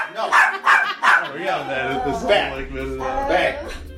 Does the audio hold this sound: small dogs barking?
yes